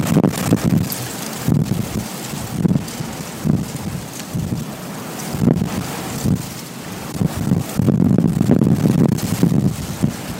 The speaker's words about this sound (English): The wind is reckless right now. Yep. A little different.